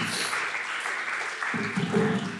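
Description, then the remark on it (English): A short burst of audience applause at a worship gathering, given for a man who has just led a prayer: a dense, steady patter of many hands clapping at moderate volume, with a faint murmur of voices rising underneath toward the end. “You can give him a little clap.”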